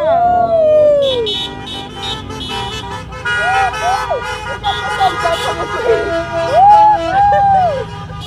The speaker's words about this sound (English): Come on, baby. Let's go. Honk for freedom. Yeah, baby. Honk for freedom, baby.